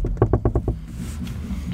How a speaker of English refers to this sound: And then while they're having this conversation, there's a sharper knock from upstairs.